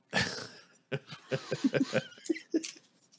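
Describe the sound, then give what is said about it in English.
A single sharp, breathy sneeze bursts out at the start, followed after a short pause by a person talking in quick, choppy bursts. “You didn't say God bless you.”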